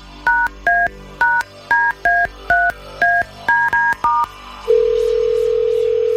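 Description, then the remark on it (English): A quick string of about ten touch-tone dialing beeps, evenly paced and clear, followed by a steady unbroken phone tone that holds to the end. No one speaks. An outside line is being dialed to place an outgoing phone call on the Big Dave Show on B105. “And let me get this outside line going. We got a very important phone call to make here.”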